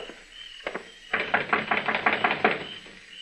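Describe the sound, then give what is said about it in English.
Knocking on the door of Mr. Silsby's shack on Cox's Lane: two quick raps, a short pause, then a fast, steady run of about a dozen sharp, hard knocks, fairly loud, with no voices. “Knock on the door.”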